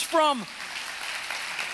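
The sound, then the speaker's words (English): A short vocal exclamation gives way to a steady wash of crowd clapping, a dense, even patter of many hands that holds at moderate loudness to the end. “It comes from, yeah, you ought to clap about that.”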